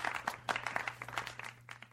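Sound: audience applauding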